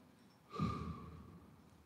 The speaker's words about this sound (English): All of life right here in the exhale and in the inhale. in the breathing out.